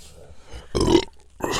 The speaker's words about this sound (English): I have to burp.